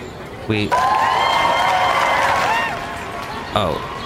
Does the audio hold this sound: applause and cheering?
yes